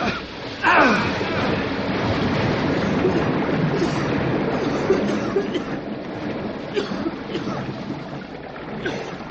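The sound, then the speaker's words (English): A sudden surge of water bursts out through a stuck door as it is pulled open and keeps gushing in a loud, steady roar, unbroken for several seconds. “If this place is full of water, it'll come rushing out in a big hurry.”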